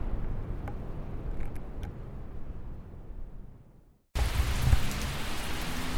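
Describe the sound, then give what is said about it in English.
Steady rain from a thunderstorm in Salem, Massachusetts, on July 27, 2021, around 7:30 in the evening, pours down in a dense, continuous hiss, dropping briefly to near silence before resuming louder and brighter, with a low rumble underneath. “This is a thunderstorm in Salem, Massachusetts, on July 27th, 2021, at approximately 7:30 in the evening.”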